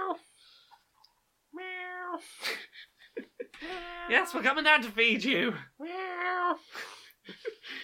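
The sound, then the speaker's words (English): A cat, Smudge, meows insistently for breakfast after an alarm has gone off, several drawn-out, rising cries in a row, while a person speaks briefly in between. “You ain't getting back to sleep after this, cat.”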